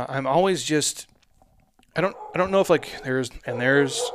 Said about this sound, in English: And there is my dog, my friends. This girl is just crazy.